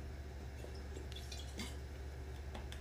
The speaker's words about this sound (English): Sorry. Take a swig of water there.